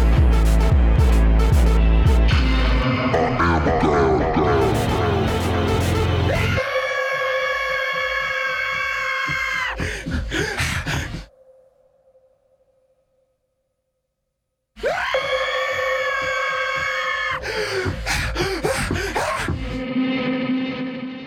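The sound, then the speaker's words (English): Loud, strained, repeated primal screams with wavering harmonics cut through a dense music mix in a song's final moments. The music drops out entirely to near silence, then more strained vocal cries return, followed by panicked breathlessness, with heavy reverb around them. “But this time, the music drops out entirely, forcing us to fully focus on these repeated screams, which are followed by a panicked breathlessness”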